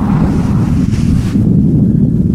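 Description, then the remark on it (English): A desert sandstorm wind in the Gobi Desert roars steadily with a heavy, buffeting low rumble, its airy upper hiss thinning out partway through as the storm dies down while the deep gusting continues, with no voices. “The storm eventually begins to die down, but the Gobi is unstoppable.”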